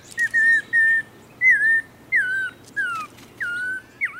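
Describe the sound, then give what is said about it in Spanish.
A black-headed oriole sings a slow, halting series of about eight clear whistled notes, each slightly wavering or slurred, spaced evenly over a faint low background hum. “Cerca, un bolsero cabeza negra suena como un niño que apenas está aprendiendo a silbar.”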